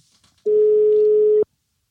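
A single steady telephone ringing tone sounds for about a second, loud, as an outgoing call is placed, with faint rustling before it and silence afterward.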